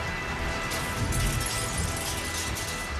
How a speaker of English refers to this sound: Wait, what's that noise? And at that moment, the Knight Cruiser smashes through the wall of Boogeyman's hideout.